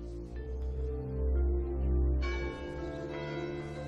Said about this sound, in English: Daytime. There's a bell, so I'm guessing around noon they're doing this.